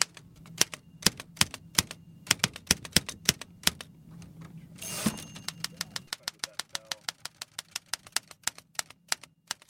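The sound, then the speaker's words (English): A manual typewriter clacks away in quick, uneven bursts of sharp, crisp keystrokes over a low steady hum, with a brief louder rasping burst partway through before the typing resumes. “I would say 10 or 12 typewriters down here, and it's like there's one from each decade.”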